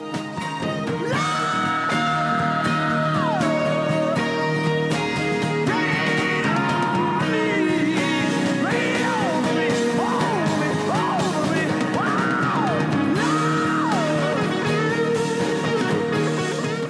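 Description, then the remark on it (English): A male singer lets out raw, strained gut screams on the word "love" in a sung line, long wailing notes that bend and swoop, riding on top of a loud, dense band playing throughout. “But then, yes, we get that gut scream again. His it's heart-wrenching, his scream on the word love.”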